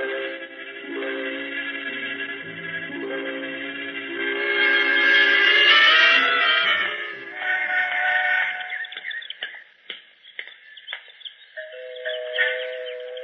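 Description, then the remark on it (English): An elaborate door chime rings out a melodic sequence of bright, sustained tones, swelling louder midway before the notes fade into a few softer, ringing chimes. “Even the door chimes sound rich.”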